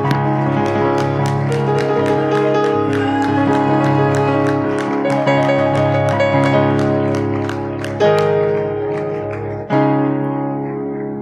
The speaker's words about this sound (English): Why don't you clap your hands to him? Come on, why don't you clap your hands to him?